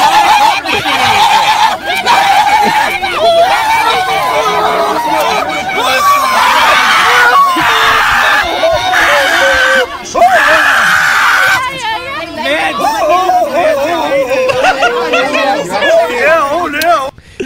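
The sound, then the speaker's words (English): A crowd of protesters screeching together in loud, sustained, wavering high-pitched cries that go on without a break, with a churn of overlapping voices beneath them. “So they're really only screeching in to mock this dumb bitch.”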